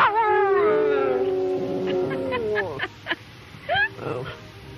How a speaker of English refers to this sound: If it's all about persuasion, like Rumsfeld says, Lyndon Johnson was one of the best, a master of the trade. This was a man who could get his dog to sing. Come on, sing for me.